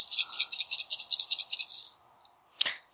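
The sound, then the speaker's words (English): A handful of twelve dice rattles in a steady, rapid shaking rhythm for about two seconds, goes quiet, then lands with a single sharp clack. No one speaks. “In this case, your limit is 12. Because that's how many dice I'm rolling.”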